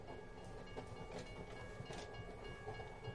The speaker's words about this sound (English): The train crept past the crossing signal on Concord Road, and he leaned out of the car to scan the small group waiting to get on.